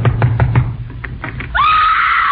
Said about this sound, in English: I hope she's home. Go ahead and knock.